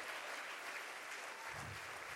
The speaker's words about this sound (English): Come on, give Jesus a round of applause tonight. Hallelujah! He's worthy tonight.